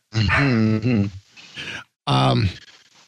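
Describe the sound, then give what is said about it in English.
A dog lets out two loud, drawn-out, groaning barks separated by a brief pause, with no one talking over them. “My dog in the background agreeing with you wholeheartedly.”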